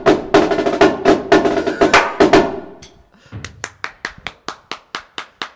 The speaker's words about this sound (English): Clap!